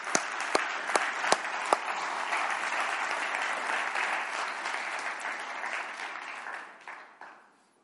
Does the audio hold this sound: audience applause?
yes